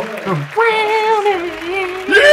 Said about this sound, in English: Yes! Yes! You see everybody in the crowd is cheering.